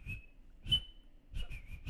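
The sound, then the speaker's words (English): A person whistles in short, breathy bursts, with a thin steady tone that keeps breaking into airy blowing. No one speaks. “I can't whistle.”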